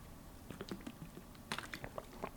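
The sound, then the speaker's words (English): A sip from a drink: a quick series of small wet clicks and lip smacks, fairly quiet, with a brief cluster of sharper mouth sounds partway through and no talking. “A little sip.”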